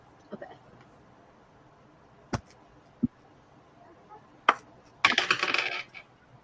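Several sharp clicks of a twenty-sided die hitting a hard tabletop, then a quick burst of rattling as it rolls and settles, fairly crisp; a player rolling for initiative in a tabletop game, the die landing on 11.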